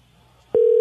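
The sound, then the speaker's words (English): After a brief near-silence, a loud, steady telephone tone switches on abruptly as a call is placed and holds at one pitch, clear, with no voices. “We are calling...”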